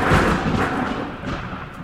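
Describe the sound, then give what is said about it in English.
A loud crash of thunder fills the whole moment, a heavy deep rumble with a sharp onset that stays strong throughout and eases off only slightly. No voices. “Suddenly, there was another crash of thunder.”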